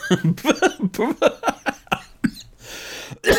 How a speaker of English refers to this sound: Look what you got me doing. You got me coughing.